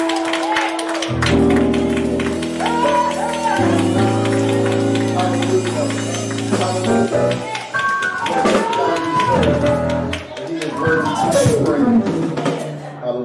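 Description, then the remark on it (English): An audience claps and applauds in a dense, steady patter over loud sustained organ chords and bass, with voices calling out through the music, giving God a hand clap of praise throughout the building. “Give God a hand clap of praise all over this building.”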